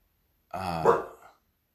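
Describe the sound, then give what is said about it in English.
A single deep, drawn-out bark from a dog named Haley, barking because somebody is outside, lasting under a second, with nothing else around it before or after. “My dog's barking because there's somebody outside.”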